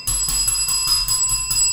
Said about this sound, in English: Look, don't touch my bell with all that residue and stuff on your fingers.